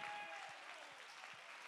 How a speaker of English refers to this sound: Come on, clap your hands and give God the praise.